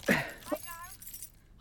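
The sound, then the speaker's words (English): A quick metallic jangle of a spare pair of keys being pulled out, a bright burst lasting a fraction of a second, followed by a short exclaiming voice and a faint rustle. “Now we don't need a locksmith, or now you're about to pluck a spare pair of keys from up your... Keys!”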